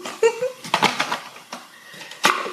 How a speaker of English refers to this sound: I'm gonna add, should have added the ice first, but I'm gonna add a couple cubes of ice.